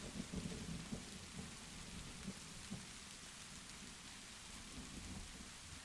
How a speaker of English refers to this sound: And again, all the sounds of the storm going around. I mean, what a nightmare this must have been.